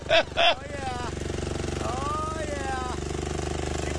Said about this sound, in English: Looks like a tractor pull. I'm waiting for the engine to blow out the side.